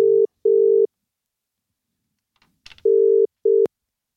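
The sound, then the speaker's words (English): A steady electronic ringback tone sounds in paired bursts, two short rings, a pause, then two more, clear, with a faint click or rustle in the gap, as an outgoing phone call is placed to a competition winner on the Gold Coast. “So, of course, we need to give him a call.”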